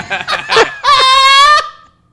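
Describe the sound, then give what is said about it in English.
A duck quacks loudly: three quick nasal quacks, then one long drawn-out quack that trails off into silence. “Quack, mother truck.”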